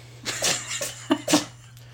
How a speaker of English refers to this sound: Our cat is sneezing.